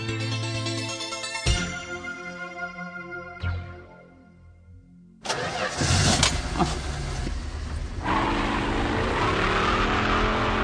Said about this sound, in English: Jeez, don't drive so fast